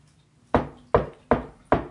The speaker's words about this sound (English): Do you want me to knock or no, I'll knock.